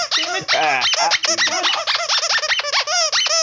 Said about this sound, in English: And then she gives him this loud-ass squeaky toy. Shit. Get this thing out of here. It's too loud. Tito, no, Tito, get away from the mic.